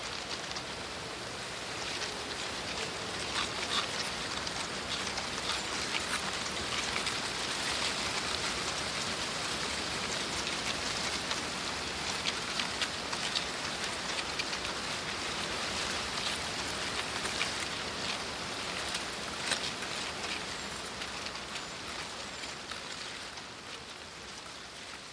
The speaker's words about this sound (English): The sycamore has a brittle sounding fresh leaf seed rattle, almost ice-like. This could so easily have been missed if I'd simply walked on by.